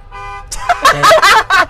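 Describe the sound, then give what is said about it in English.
The alarm horn of a white car gives a single short, steady honk at moderate volume, then breaks off as people start talking over the quiet that follows. “It's a different car going on. No, it's the same one.”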